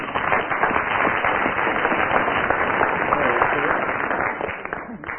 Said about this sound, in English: Oh, incidentally, Willie has now done the Rubik's Cube. Yes. Round of applause for Willie.